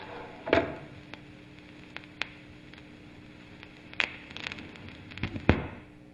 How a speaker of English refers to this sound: That wasn't me playing some manky old record. That was on the recording, and it does give it kind of a vibe, that sort of vinyl crackle and hiss.